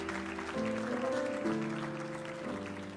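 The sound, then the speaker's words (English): An audience applauds steadily throughout, a dense wash of clapping over sustained keyboard chords that shift a few times. No one speaks. “Give them a hand clap today, guys.”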